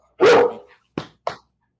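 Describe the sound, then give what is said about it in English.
A dog barks three times: one long, loud, drawn-out bark followed by two shorter, sharper yaps in quick succession, with no one talking. “Your dog's over there just putting some just exclamation points on our conversations today.”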